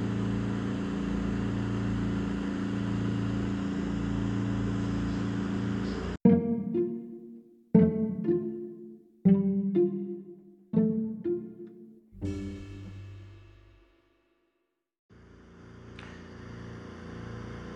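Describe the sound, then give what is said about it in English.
Steady whooshing airflow from two oxygen concentrators running at 18 liters of oxygen, with a low mechanical hum, broken midway by five sharp, ringing struck tones and a brief silence before the rushing air resumes. “What you're hearing is the airflow from my dual oxygen capacitors just trying to keep me alive on 18 liters of oxygen.”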